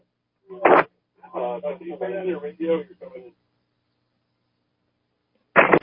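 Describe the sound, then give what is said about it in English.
A muffled, phone-quality voice plays from a caller's radio behind the phone line, with a steady low hum underneath, sounding like a delayed echo, framed by two short bursts of noise at the start and end. “Can you turn down your radio? You're coming in hard behind with an echo.”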